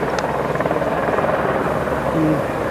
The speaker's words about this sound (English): That bloody helicopter again. Nothing we can do about it, really.